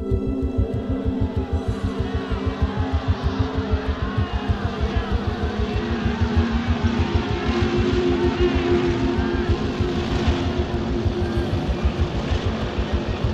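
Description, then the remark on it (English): A deep, throbbing rumble of Harley-Davidson motorcycle engines, a parade of about a dozen bikes arriving at sunset, its low pulsing exhaust beat continuous throughout with slight swells in revving, and no voices standing out. “At about 5 o'clock that afternoon, just as the sun was setting, there was a rumble of revving motorcycle engines roaring above the noise of the crowd.”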